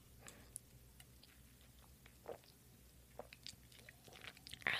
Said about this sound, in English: oh my gosh, I keep making noise. Sorry. Let me take a sip of my energy drink.